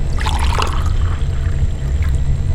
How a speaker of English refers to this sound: I'll pour her a drink from the pitcher on the table.